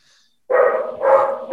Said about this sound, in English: There's that dog again. I'm going to mute this thing when you're talking because this dog, I think, has a...